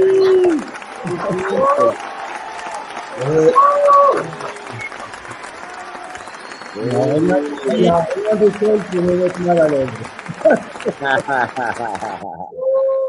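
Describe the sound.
Steady, dense audience applause runs for about twelve seconds to welcome a guest, with voices speaking and calling out over it before the clapping cuts off and a voice continues.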